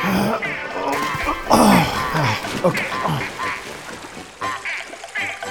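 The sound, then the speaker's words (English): Geese quack and honk loudly at an attraction along a boat canal, a busy, overlapping chorus of nasal calls that rises and falls in uneven bursts for several seconds. “Oh, come on, not by the singing geese.”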